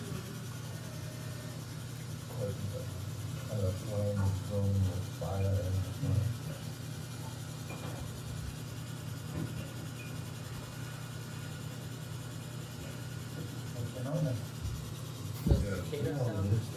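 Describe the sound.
A steady, droning low hum of submersible engines running underwater, recorded with a tape recorder inside the submersible, fills the whole recording, with a hiss of background noise and occasional faint, muffled voices.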